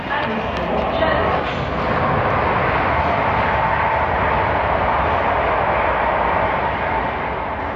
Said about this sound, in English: Train's just come in on the other side